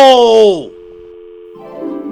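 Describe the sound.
A loud shouted voice falls off as a phone call is hung up, then a steady telephone dial tone hums on its own for nearly a second before another voice begins talking over a quieter background.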